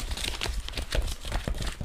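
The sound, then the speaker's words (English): Paper scrolls crinkle and rustle as they are unrolled, a steady run of dry crackling and soft crunching lasting a couple of seconds, with no voices. “Let's unroll these.”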